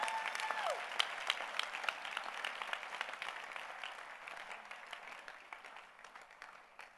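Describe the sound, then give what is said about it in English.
A church audience claps hands for Jesus in dense, overlapping applause with a few brief voices over it, steady at first, then slowly thinning and growing quieter toward the end. “Oh, clap your hands for Jesus.”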